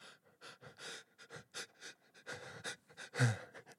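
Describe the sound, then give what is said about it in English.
A person pants heavily and rhythmically, quick breathy huffs building toward a louder, throaty gasp near the end, working up to a fake sneeze. “Do you guys want to hear a real fake sneeze?”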